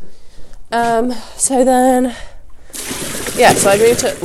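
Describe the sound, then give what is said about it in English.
Water gushes steadily into a water bucket with a hissing rush for the last second and a half, following two short tonal vocal sounds, with a voice faintly over the pouring. “I really don't need your help with this water bucket.”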